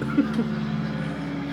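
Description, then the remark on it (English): A low, steady engine drone of an airplane passing overhead, a continuous rumble with a faint hum that holds level for the whole moment, with a couple of brief soft bumps near the start. “Why is a plane flying over?”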